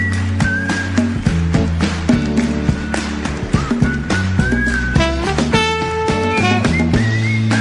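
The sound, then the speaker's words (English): A wavering, slightly off-pitch whistled melody runs over a full, steady band backing, the whistle sliding between notes in short phrases. No one speaks. “No, the whistling's a little bit out of tune.”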